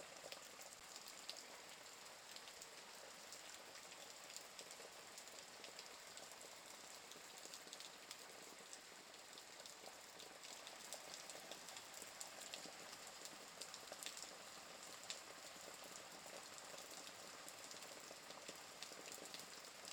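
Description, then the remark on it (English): Steady rain patters on the sculpted streets and buildings of a quiet side street in the evening, a dense, continuous hiss of drops with small crisp taps scattered throughout, even in level, with no voices. “You hear the patter of the rain hitting the sculpted streets and buildings as you make your way down the path.”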